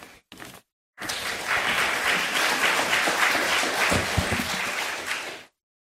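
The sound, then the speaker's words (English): A crowd breaks into sustained applause for a speaker after an evening message, dense overlapping claps holding at a steady, fairly loud level for about four and a half seconds after two brief opening bursts, then cutting off. “You want to give him another round of applause?”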